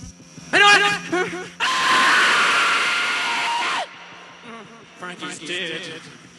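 A harsh, distorted, blood-curdling scream bursts out loud for about two seconds, framed by shorter strained vocal cries before and after, in a raw 1977 song recording telling a Vietnam PTSD story.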